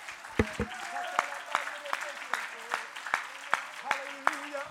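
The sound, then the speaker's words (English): An audience at a church service claps hands unto the Lord in a steady, even rhythm, about two sharp claps per second, with sustained voices or tones carrying faintly underneath. “Oh, would you clap your hands unto the Lord?”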